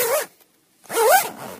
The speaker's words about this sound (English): So there you have it. Something to think about the next time you're zipping up your backpack.